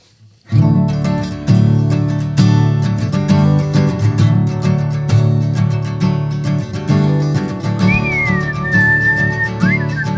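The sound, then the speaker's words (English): Steady strummed guitar plays throughout, and near the end a person whistles a short, wavering melody over it for a couple of seconds. “I can't whistle.”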